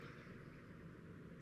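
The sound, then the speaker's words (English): After a stretch of near silence, a sudden loud sneeze bursts out right at the end, sharp and abrupt, cut off almost as soon as it starts. “Sorry. Bless you.”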